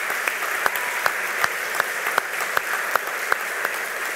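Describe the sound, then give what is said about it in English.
An audience at an evening service applauds the musicians, singers and band, a steady, dense wash of clapping from many hands, with a few sharper claps popping out at regular intervals. No one speaks. “Let's give them a round of applause again.”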